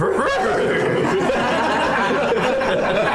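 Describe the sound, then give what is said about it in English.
A person imitates a horse's neigh, a loud, wavering whinny with a quavering, chuckling edge that runs continuously for about three seconds. “Impression of a horse?”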